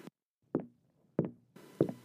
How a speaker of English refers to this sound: Sounds of Bruce's heavy footsteps came from outside.